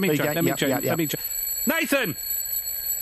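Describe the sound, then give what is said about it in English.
A loud alarm clock rings with a steady, shrill tone continuously in the background while voices talk and then call out loudly over it. “I think he might not be able to hear you because that alarm is really loud.”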